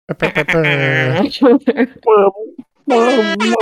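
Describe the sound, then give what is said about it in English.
A voice imitates an air horn with loud, brassy sustained blasts, broken up by short choppy bursts, then a final long honk that carries to the end. “Do an air horn out for this guy.”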